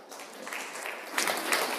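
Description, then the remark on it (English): An audience claps in a steady, dense patter of many hands, the applause growing a little louder and brighter partway through before continuing to the end. “Well, don't clap yet.”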